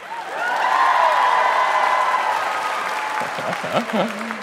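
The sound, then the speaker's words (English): A comedy show crowd claps and cheers steadily for several seconds as a comedian is introduced, with whoops over the dense applause, which then thins as a voice begins talking near the end. “Round of applause if you have anxiety.”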